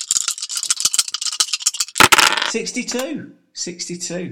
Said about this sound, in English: Okay, let's give the dice another shake.